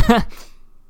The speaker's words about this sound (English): Got that on the podcast, though. A nice little slurp.